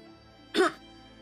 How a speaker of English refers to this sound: you don't have to cough.